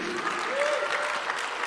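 An audience claps hands in praise during morning worship, a dense, steady wash of applause from many people that holds at an even loudness throughout, with a faint murmur of voices underneath.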